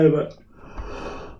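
A single yawn: a brief voiced groan that trails off into a long, breathy exhale, heard alone with no talking.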